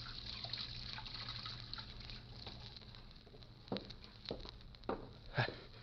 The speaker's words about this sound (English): So I went into the tailor's little back room and took off my suit. Then I went over to the washstand and started to wash.